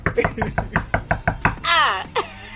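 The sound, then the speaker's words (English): A quick, steady series of about seven sharp, loud knocks on a door, followed by a short drawn-out vocal sound. “And knock on your door.”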